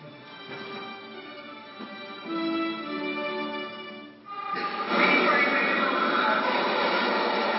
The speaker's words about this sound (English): The train was coming in like that.